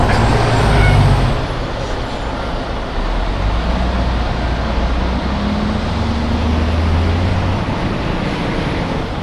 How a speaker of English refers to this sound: Sorry, just got a truck and some cars passing.